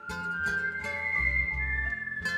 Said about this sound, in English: She whistles out to men walking alone at night.